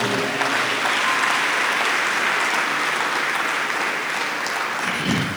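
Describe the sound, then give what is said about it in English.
A crowd applauds steadily, a dense wash of many hands clapping at an even, fairly loud level for the whole stretch, with no voices standing out. “Some people are not clapping and they are not even feeding five.”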